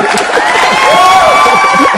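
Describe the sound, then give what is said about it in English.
A hand claps and cheering sound effect: a loud crowd cheers and whoops continuously for a couple of seconds, with high shouts and whistle-like cries rising over a dense, steady roar. “Let me see if I can find some hand claps in here for you, my brother.”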